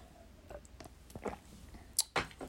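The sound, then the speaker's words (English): Quiet mouth sounds of someone taking sips of water: wet clicks and small gulps spread over a couple of seconds, ending in a couple of louder swallows. No one speaks. “Let me get some water.”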